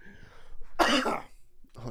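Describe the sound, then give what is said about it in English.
A single harsh, explosive cough bursts out, loud and broad, framed by brief murmured voice sounds before and after. “Yeah, you need a cough on that.”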